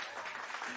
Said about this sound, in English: So let's give a round of applause of that.